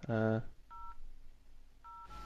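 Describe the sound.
Two short electronic telephone keypad beeps as a surprise caller phones in on the Yogscast, about a second apart and moderately loud, following a brief loud buzzy voice-like burst at the start, with a low steady hum underneath.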